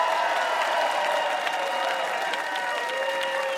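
Steady applause from the audience of the quiz show Ask Me Another for the contestant who came in second, a dense wash of clapping hands that holds at an even level throughout with no voices standing out.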